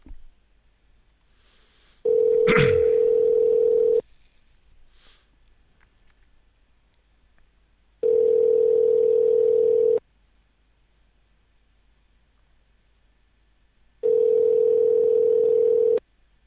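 Ringback tone of an outgoing phone call back to a man about a car: three steady two-second electronic rings, evenly spaced by silent gaps, clear with no one talking.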